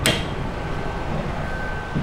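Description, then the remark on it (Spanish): An automatic free public toilet door opening after its washing cycle has finished and the green light is on: a brief clunk at the start, then a steady mechanical whirring with a faint, thin whine running through it. No one speaks. “Ahí se abre, ¿no? La puerta.”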